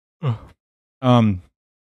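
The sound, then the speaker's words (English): A voiced yawn comes in two breathy pulses, a short one and then a longer, fuller one that trails off, with no talking. “Excuse me. Just yawning.”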